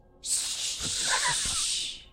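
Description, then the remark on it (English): A single loud, drawn-out shushing sound from a voice, a steady breathy hiss lasting about two seconds before trailing off, with no other sounds or talk around it. “I turn around and go, shh.”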